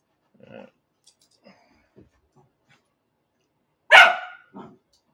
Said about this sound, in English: The dog goes crazy.